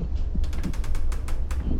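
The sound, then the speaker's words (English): A hotel room door latch at the Hotel Santika Premier clicks and the door creaks open, a quick run of mechanical clicks and a rasping creak against a steady low hum, with no one speaking. “I think someone's at my door, weirdly. Hold on.”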